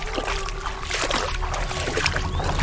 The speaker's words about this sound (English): Come down the riverbank with me. Hurry! Good. Now splash around in the water. Churn it up. Make it look like we're trying to lose them by going up or downstream.